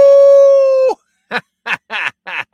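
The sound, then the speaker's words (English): A person imitates a wolf howl: one long, steady, loud howling note that dips at the end, followed by four short yelping 'ow' calls in quick succession. “I howl like a wolf. Ow, ow, ow!”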